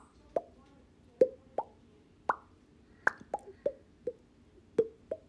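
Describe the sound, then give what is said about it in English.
Rainwater droplets drip outdoors among trees under an overcast grey sky in an irregular series of about ten sharp, plinking plops, each a brief bright tone with a quick decay, some louder than others, over a quiet low background. “And amongst that, the living trees and the water falling from the sky and the sun peeking through the breaks in the clouds and the overcast gray skies and the droplets of water that make this beautiful ambient ASMR sound.”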